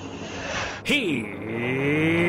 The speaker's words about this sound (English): That's why there's not going to be any NASCAR hybrid race. The NASCAR hybrid race would be like, here they come.